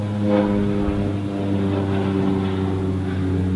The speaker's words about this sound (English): Wow, an airplane.